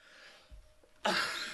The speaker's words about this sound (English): Sorry, I keep coughing.